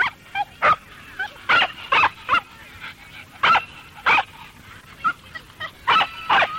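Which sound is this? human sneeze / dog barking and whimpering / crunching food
dog barking and whimpering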